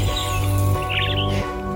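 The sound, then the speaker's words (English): A pet bird named Doc chirps in a short flurry of bright, high tweets in the middle, set against a steady humming, tonal background; the chirping is fairly soft. “That's Doc, our bird, in the background for this episode.”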